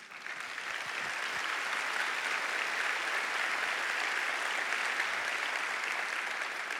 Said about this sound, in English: Now you clap because that's what God does.